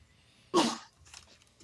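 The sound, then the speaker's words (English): A single abrupt sneeze bursts out, loud and breathy, then quickly trails off with faint rustling afterward. “God bless you.”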